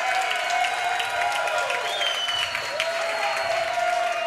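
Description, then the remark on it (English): A large crowd cheers and applauds as Kansas City Chiefs President Mark Donovan is welcomed. The cheering is a dense wash of clapping and whoops with a sustained high whistle running through it, loud and continuous throughout. “You haven't had that big a cheer since you won the Ivy for Brown as a quarterback.”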